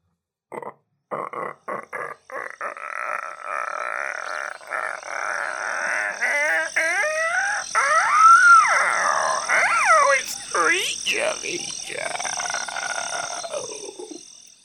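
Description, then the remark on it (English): A short segment jingle built from animal noises: a quick run of clicks and croaks, then swooping whistles and chirpy calls, loud with no talking. “It's called Creature Feature, and the jingle for it goes a little something like this.”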